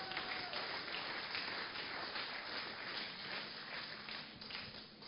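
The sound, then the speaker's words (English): An audience claps their hands for the Lord in a dense, steady wash of applause that holds at an even level for several seconds, then starts to thin and fade toward the end. “Why don't you give the Lord a wonderful clap of hands?”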